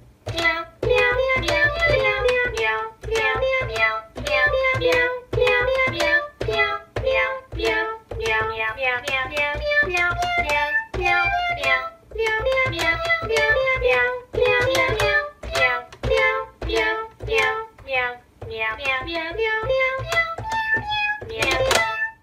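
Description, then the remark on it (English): A bouncy, simple electronic keyboard tune, a performer's cat playing a keyboard, plays loud, with quick repeated notes and chords in a steady, cheerful rhythm and a low bass line underneath, no voices. “Until we get to that point, though, we're going to let … play us out.”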